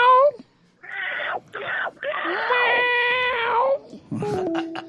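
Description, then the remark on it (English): A caller's voice lets out a string of loud, high, wailing screeches that sound like a yowling cat, in several drawn-out bursts with short gaps, ending in a shakier, broken cry. “Who speaks pterodactyl? Who can translate? Well, I spoke cat, cat.”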